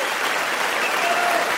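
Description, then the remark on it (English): Steady audience applause at the end of a comedy show, clapping for the people who were the best sports. It is a dense wash of many hands clapping at an even, fairly loud level throughout, with no voices standing out above it. “And I always, at the end of the show, like to clap for the people who are the best sports, because that shows good self-esteem.”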